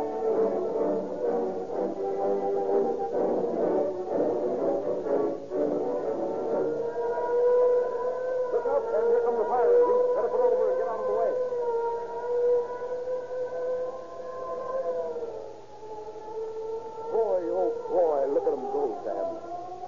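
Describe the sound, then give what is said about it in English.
A wailing fire engine siren rises and falls continuously, fairly loud, sliding between pitches with a steady droning tone beneath, sounding like an old radio recording. “And follow the fire engine.”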